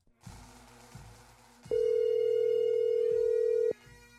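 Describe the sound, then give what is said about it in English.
A call placed from a mobile phone rings through a speaker: one steady, loud ringback tone lasts about two seconds, preceded and followed by quieter muffled background noise. No one speaks. “Let's just call him up.”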